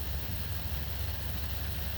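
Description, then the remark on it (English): Sudden heavy rain pelts the windshield of a car driving on a byway in a dense, even hiss over a steady low rumble, continuous and unbroken for the whole stretch, with no voices. “That's just the rain off the windshield.”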